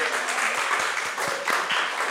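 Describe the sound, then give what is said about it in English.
Sustained applause from an audience for the show's producer, a dense steady wash of many hands clapping at once, fairly loud and continuous throughout with no voices standing out. “Round of applause for Nick McCorriston.”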